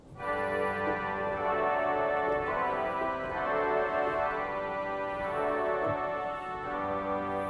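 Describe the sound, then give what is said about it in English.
A pipe organ plays sustained chords on the big orchestral string stops of its bombard division. The tone is rich and reedy, loud and steady, and it shifts harmonies a few times with no talking. “And then the big orchestral strings is in the big bombard division.”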